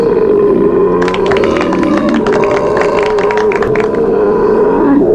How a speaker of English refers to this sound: Four, a body should really not make that sound. Now, Irishmen know how to belch like that. They do. No, that one was definitely a British belch.